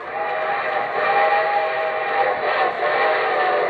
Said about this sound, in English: And from Hollywood, here comes the star-studded show train.